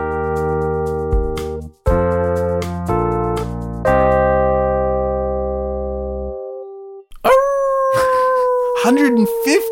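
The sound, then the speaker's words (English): A person imitates a dog with a loud, drawn-out howl that bends and wavers in pitch. It comes after several seconds of steady, sustained tones. “That's right, doggy. I'm a dog.”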